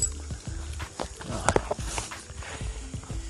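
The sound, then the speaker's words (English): Footsteps crunch along a path at a steady walking pace, each step a crisp, hollow knock, with a few irregular shuffles as the walker steps around horse droppings. “I'm stepping around some horse poop here.”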